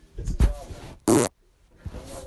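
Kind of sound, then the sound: human body sound, fart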